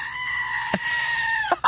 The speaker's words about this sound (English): It's a screaming goat. You know the screaming goats? You've heard of them, of course. So now, every time we say Donald Trump, you're going to hear.